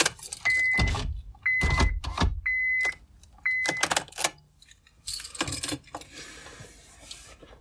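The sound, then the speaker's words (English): A car's power window whirs in four short bursts, each with a steady motor hum and clunk, as someone sitting in the car cracks the window open, followed by a wash of outside noise as it starts to rain outside. No one speaks. “I'm gonna crack a window here.”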